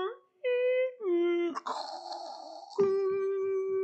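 A voice imitates a home computer's dial-up modem connecting over a phone line to a local community college bulletin board: steady sung tones shifting pitch in steps, a harsh hissing screech in the middle, then a held tone again.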